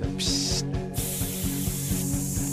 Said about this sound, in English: Of course, it sounds cool when you put the guitar hits in there. He was doing all these sound effects that sound like steam.